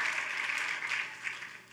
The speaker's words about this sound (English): If you agree, put your hands together and let's applaud and thank the Lord for laying down his life as a living sacrifice.